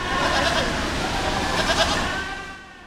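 Several goats bleat in overlapping, wavering cries against a busy, crowded background murmur at a junior market goat show, steady and fairly loud for the whole stretch before easing off at the end.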